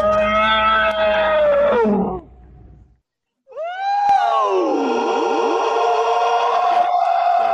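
A Krayt dragon call as done in the film A New Hope to scare off the Tusken Raiders: a shrill, howling cry with rich harmonics that falls in pitch, breaks off briefly, then rises again into a second, longer wailing roar that holds steady to the end.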